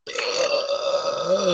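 A long, loud burp rumbles on for over a second with a steady, throaty drone, standing alone with no talking around it.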